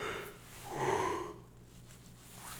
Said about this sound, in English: Man, it's two yawns in a row. I'm waiting for this triple shot to kick in. I didn't want to record this late. It just happened this way.